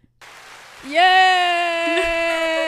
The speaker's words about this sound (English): I think the applause were good. Yeah. I think the applause were.